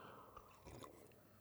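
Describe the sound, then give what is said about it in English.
Quiet sipping of tea, with soft wet slurps and a gulp or two from the mouth over about a second and a half, and no talking. “Excuse me, I'm gonna have a little sip of tea.”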